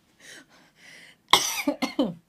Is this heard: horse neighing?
no